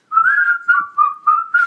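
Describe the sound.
Someone whistles a short melodic phrase from a hip-hop song, a bright steady tone broken into four or five connected notes with brief gaps between them, no talking.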